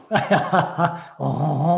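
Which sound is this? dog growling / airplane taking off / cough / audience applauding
dog growling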